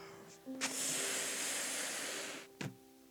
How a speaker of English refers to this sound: And see, and I can blow this balloon as much as I can until it can hold no more air.